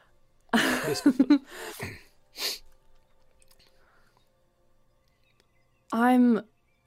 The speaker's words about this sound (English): Bless you. Bless him.